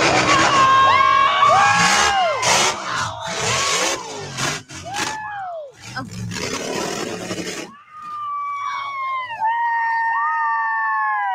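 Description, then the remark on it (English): A large crowd at a crash event roars and cheers in loud surging bursts, mixed with rising and falling engine-like wails, before the cheering drops away and sustained whining tones carry on. “Tire didn't go flying into the crowd.”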